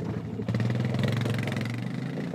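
An ATV engine idles steadily, a loud, low, even putter of rapid pulses that kicks in after a brief moment and holds without change, as its rider gets off to unlock a metal gate. No one speaks.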